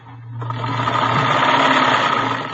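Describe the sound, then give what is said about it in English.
A sewing machine stitching ruffles on a dress in a back bedroom starts up after a brief low hum and runs steadily, its rapid mechanical whir fairly loud, continuing without pause to the end. No one speaks. “She was sitting calmly at a sewing machine, stitching ruffles on a dress.”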